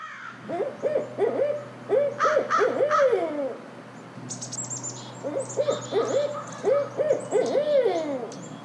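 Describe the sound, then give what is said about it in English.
A barred owl calls in a rhythmic series of hoots, then repeats the phrase after a short pause, with faint higher whoops and background birdsong around it. No one speaks. “Who cooks for you? Who cooks for you too? That's a barred owl.”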